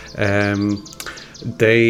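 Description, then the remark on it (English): Two loud Canada goose honks, a long nasal call followed by a brief pause and a second honk starting, with rough harmonic tone and some faint background noise. “I must say that this is the Canada goose.”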